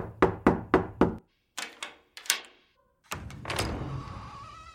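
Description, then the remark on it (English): Four quick, evenly spaced, sharp knocks on a door, then a few softer, scattered thuds and a pause before a longer rough, rushing noise takes over. “Who is it? Whatever you're selling, we don't want any. Listen, pal. I said go away. Don't make me open this door.”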